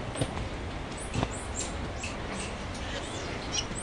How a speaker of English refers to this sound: This is the squirrel monkeys.